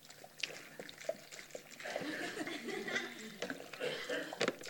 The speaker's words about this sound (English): But I'm going to put this 2 litres of water in our bucket.